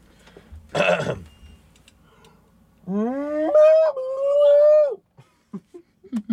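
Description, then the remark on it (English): A person imitates a cow mooing with a single drawn-out voiced call that rises in pitch and then holds steady for about two seconds. A short noisy burst comes before it, and faint clicks follow. “Yeah, I moo pretty heavy.”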